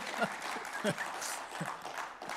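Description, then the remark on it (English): Quiet, scattered applause from a crowd, a steady patter of many hands with a few sharper claps standing out, while voices murmur underneath. “If you're going to clap, just everybody clap.”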